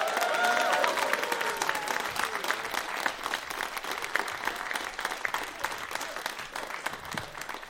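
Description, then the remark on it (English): A crowd cheers and claps steadily and loudly to welcome the guest artist. A few cheers and whoops rise over the dense patter of applause for several seconds before it starts to thin out. “So please, a big cheer round for the wonderful …!”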